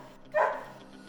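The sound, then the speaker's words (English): A single short dog bark rings out, clear, then fades quickly into quiet background with no one talking. “And one of the first things he did with the money was buy his old dog back.”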